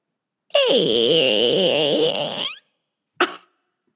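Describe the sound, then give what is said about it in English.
A voice imitates a creaking door with one long, strained groan that wavers up and down in pitch for about two seconds, then gives a brief breathy huff. “Can you do a creaking door?”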